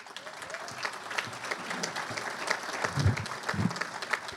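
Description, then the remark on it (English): An audience at an NAOP program applauds steadily, a dense wash of many hands clapping at a moderate level, with a few faint voices and low thumps mixed in toward the end. “You're going to hear applause, and then you'll hear the full program from Alan and Josh.”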